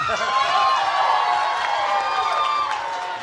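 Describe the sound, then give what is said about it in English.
A crowd claps and cheers steadily for a man once again, a dense wash of applause with scattered shouts and whoops, loud throughout the few seconds and easing slightly toward the end. “We have clap all for him again.”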